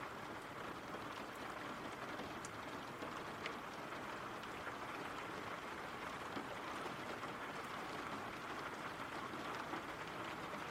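Steady rain falls without pause, a dense hiss of countless drops with faint patters and ticks scattered through it. The level stays even throughout, and no one speaks.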